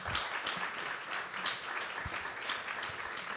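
Steady applause from an audience, a dense wash of many hands clapping at once, sustained and fairly loud throughout with no voices.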